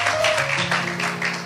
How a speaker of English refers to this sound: Praise the Lord. Praise the Lord. Can we give God a hand clap of praise for that?